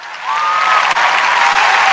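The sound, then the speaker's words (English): A burst of loud, dense applause from a large crowd, played from a soundboard, steady and continuous with faint whistles ringing over the clapping, sounding like a canned sound effect. “Nice thunderous applause.”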